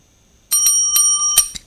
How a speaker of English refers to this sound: All right, hit the ding, ding, ding, ding, ding. Yeah. Again. Oh, yeah, we got to have the bell. You got to do it one more time.